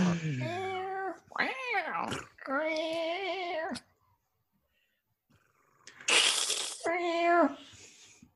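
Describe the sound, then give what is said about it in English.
A person in a comedy sketch imitates a cat with several drawn-out, wavering meows: a few long yowls in a row, a pause, then a breathy hiss-like burst and one more meow, fairly loud. “You have come to the great cat seeking advice and wisdom.”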